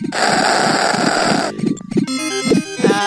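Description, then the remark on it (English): Harsh, buzzy synthesized sound effects from a Western Sega Genesis video game: a dense noisy blast for a second and a half, then choppy chiptune bleeps and stuttering tones with sharp, gritty edges. “Those distinctive fart sounds can only mean this is a Western Genesis game.”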